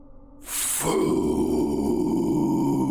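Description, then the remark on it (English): A loud, sustained monstrous growl with a deep, raspy rumble, starting after a brief hiss and holding steady for a couple of seconds with no talking. “The thing growled, and its face opened into four large flaps.”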